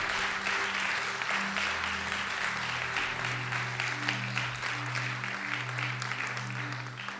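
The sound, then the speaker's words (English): Sustained applause from a large church audience clapping for the preacher and his wife fills the whole stretch, dense and steady, while a low sustained organ or keyboard tone hums underneath the clapping. “I want us all to clap for the man of God and his wife.”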